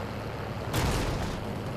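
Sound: video game gunfire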